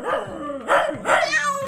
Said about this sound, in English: I really should have thought about the consequences of having a barking cat. But too late now, I guess.